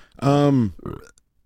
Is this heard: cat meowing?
no